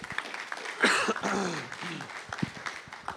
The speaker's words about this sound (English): I just feel like we should just give God a hand clap for that for just a moment. Can we do that?